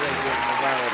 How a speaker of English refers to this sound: Nah, so that's super dope. I just wanted to, you know, just shout that out. Let's give them a quick little round of applause, man.